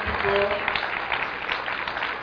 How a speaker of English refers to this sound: Oh, yeah, keep clapping. Yeah. So keep clapping until it's not awkward. Gets weird for everybody.